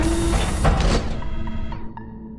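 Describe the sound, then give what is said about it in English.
A locked sliding lab door mechanism whirs and hisses loudly for about a second, then stalls out with a few faint clicks and low electronic tones as it fails to open during a lockdown. No one speaks. “The door's locked. Computer, what's wrong with the lab door?”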